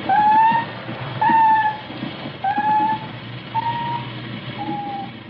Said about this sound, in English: Now the sound detectors deep down beneath the waterline, picking up squeals and howls and all suspicious hums.